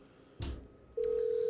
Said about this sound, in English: All right, we're calling Wesley. Hopefully he'll pick up.